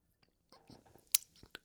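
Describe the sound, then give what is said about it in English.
A quiet sip of hot Lemsip from a mug, with soft wet mouth noises and a brief sharp slurp, followed by a faint swallow and lip smack. No one speaks. “In the break there, I'm going to take another little sip here.”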